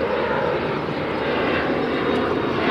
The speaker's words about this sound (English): It's right next to LaGuardia Airport, so I can watch these jumbo jets soar in for a landing. Here's one now overhead.